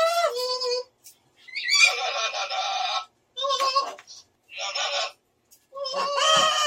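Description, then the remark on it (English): A parrot squawks and chatters in a series of loud, harsh bursts, five or so raspy calls with short gaps between them, with no one talking. “Sometimes, it's just nice to have a friend to squawk on the phone with.”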